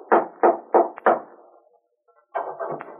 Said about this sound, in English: One evening, he decided to call on Bob, went to his house, and rapped on the door.